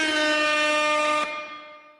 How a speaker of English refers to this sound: Little air horn.